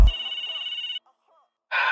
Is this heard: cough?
no